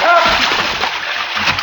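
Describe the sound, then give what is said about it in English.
A heavy splash as a man goes overboard from a houseboat into a river, followed by a steady roar of churning, sloshing water that stays loud throughout without fading. “One try at his midsection, caved him in. Then it was man overboard.”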